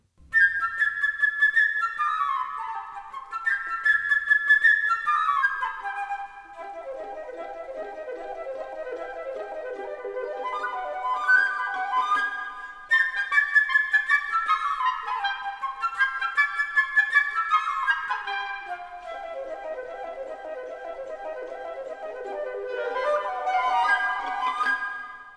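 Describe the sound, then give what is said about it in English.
A flute plays the bright, chirping bird melody from Prokofiev's Peter and the Wolf: quick trills and fast descending runs, high and agile, with repeated phrases sweeping down and back up, all without any voices. “I'm going to write the definitive bird flute excerpt”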